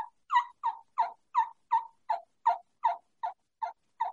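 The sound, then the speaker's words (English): A turkey mouth call plays a steady series of about a dozen raspy yelps blending a kee-kee whistle, evenly paced and mid-pitched, with no talking over them. “So all I'm doing is I'm doing like a whistle, like a kiki whistle. Only I'm yelping.”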